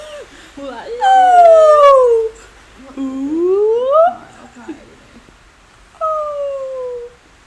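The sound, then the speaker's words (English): A voice imitates a whale call in three long, drawn-out moaning glides: a falling one, a rising one, then a shorter falling tone. Each is loud, separated by brief pauses. “Like whale sounds.”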